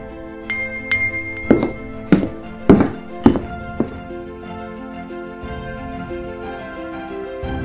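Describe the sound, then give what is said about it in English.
A door handle is pulled and a door swings open: a quick series of solid clunks mixed with bright glassy clinks, followed by a soft lingering ringing tone. No one speaks. “Now, walk to the door and reach for the handle. Give it a pull and come inside.”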